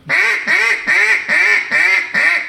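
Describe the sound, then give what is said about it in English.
Six loud, evenly spaced nasal quacks blown as a hail on a new Chit Chat duck call, each bright and raspy with a slight downward bend, repeating in a steady rhythm with no talking. “That's my duck caller. I'll give you a boss hand on the new chit chat.”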